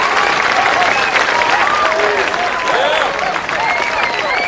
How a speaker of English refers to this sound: You don't have to clap every time, but thanks very much.